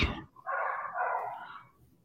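dachshund barking

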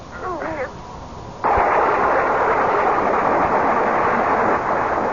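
lightning strike and thunder

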